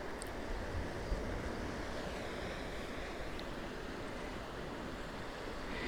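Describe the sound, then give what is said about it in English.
Steady wash of surf breaking in Priest's Cove, a sheltered rocky cove at the bottom of Cape Cornwall, Cornwall, on a windy day; a continuous rushing roar with some wind buffeting the microphone, no voices. “It's quite windy out on the Cape itself, so I'm sheltering in Priest's Cove, tucked into the bottom of Cape Cornwall.”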